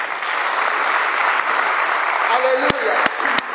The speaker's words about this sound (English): We thank God for the choir. And the minister so powerfully to us this morning. Amen. Clap for the choir.